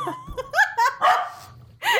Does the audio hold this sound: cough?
no